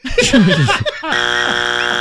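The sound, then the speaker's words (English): A brief burst of voices and laughter, then a loud, flat, harsh game-show wrong-answer buzzer blares steadily for about a second before cutting off, during a survey-answer quiz game. “Your bands are your buzzers.”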